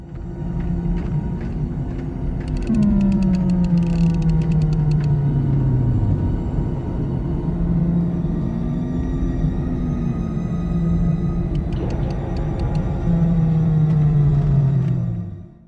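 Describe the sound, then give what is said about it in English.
A sci-fi tractor beam powering down as Obi-Wan turns it down: a loud, steady electronic hum with deep rumble, its tones repeatedly gliding downward, with occasional crackling bursts throughout. “I did have the Wookiee roar, but I've got the tractor beam when Obi-Wan's turning it down.”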